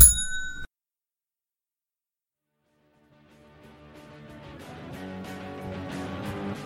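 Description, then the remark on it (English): A single bright bell strike rings out loud, cut off sharply after a moment, followed by silence and then music gradually swelling in. “Ring that bell.”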